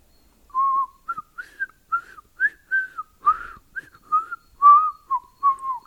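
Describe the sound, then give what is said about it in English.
A man whistles a lively tune as he walks into Ambalal House carrying a title deed: a string of about a dozen short, bright notes at a steady, bouncy pace, with no talking and nothing else in the background. “He whistled as he walked into Ambalal House with the title deed.”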